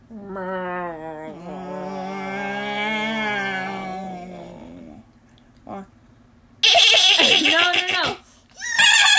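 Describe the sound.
A person imitates a horse neigh with a long, quavering, wavering cry, then after a short pause lets out a louder, harsher second whinny-like burst.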